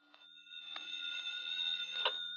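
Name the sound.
telephone ringing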